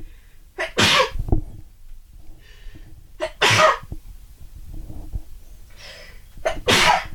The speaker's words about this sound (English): Hold on, I have to sneeze.